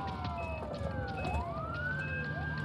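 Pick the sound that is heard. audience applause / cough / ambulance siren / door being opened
ambulance siren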